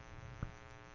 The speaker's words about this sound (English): I think that's a speaker that you hear humming in the background for us here at the here in the press box.